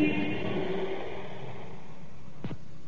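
Emergency car engines rev and rumble as the vehicles pull out of a station in London in response to an air raid warning, a steady mid-range roar that gradually thins out, with a sharp short burst of noise near the end.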